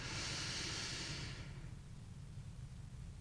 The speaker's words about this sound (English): And let's do two more together. Breathing in.